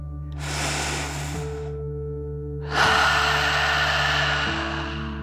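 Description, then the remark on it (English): A slow, deep breath drawn in through the nose, followed by a louder, longer, airy exhale through the mouth over a soft steady drone, as part of a deep relaxation breathing exercise. “Breathe in through your nose, filling up your belly, and then out through your mouth, pretending you are breathing fire like a dragon.”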